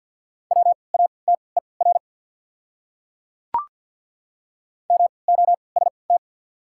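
Morse code tones at 50 words per minute with triple character spacing, spelling one of the top 100 words: a steady mid-pitched beep keyed in quick short and long pulses, in two bursts separated by a pause with a single sharp click between them.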